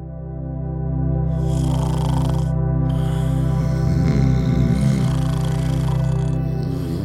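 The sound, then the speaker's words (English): A person snores loudly: a deep rattling drone with breathy, hissing rasps over it, swelling and dragging on for several seconds with no talking. “We all know someone who snores a lot.”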